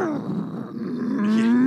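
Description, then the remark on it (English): A voice imitates a motorcycle with a loud, rough, buzzing growl held for under two seconds, its pitch climbing toward the end like an engine revving. “I can do you like a motorcycle.”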